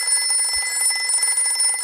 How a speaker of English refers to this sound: The phone rings. What can it mean? Action? Horror? Mystery? Danger? Intrigue?